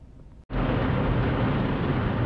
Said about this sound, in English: Right now, we are at the car wash